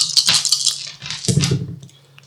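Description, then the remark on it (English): Dice are rolled for a Hawkeye roll in a tabletop role-playing game, one player rolling four dice: several dice rattle and clatter together in a quick burst, a bright clicking tumble that settles briefly, then a second lower rolling rattle before dying away. No one speaks. “Make a Hawkeye roll, each individually. I'm on four dice.”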